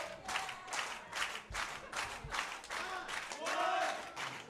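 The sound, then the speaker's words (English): A large crowd at a wrestling match cheers and claps loudly, with rhythmic bursts of applause and excited shouting rising over a steady roar of noise. “And now the crowd.”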